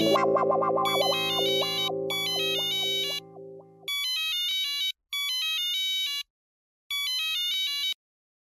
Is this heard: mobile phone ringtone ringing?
yes